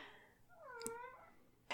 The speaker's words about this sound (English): You might have heard my cat meow just then. I'll leave it in because it's pretty sweet. She's quite cute.